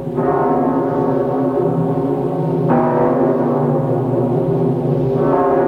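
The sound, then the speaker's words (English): A large bell tolls slowly, three loud strikes about two and a half seconds apart, each deep, rich ring humming on and overlapping the next. No voices. “A bell is a parish clerk calling for assemblies, church services, and tolling the time.”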